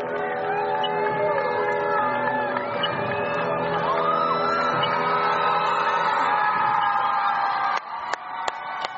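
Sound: crowd cheering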